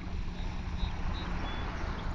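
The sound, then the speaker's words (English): Water flows in a steady, continuous rushing wash, full and rumbling in the low end, with no pauses, distinct splashes or voices. “Allowing the sound of the water to wash away any of the tightness or distractions.”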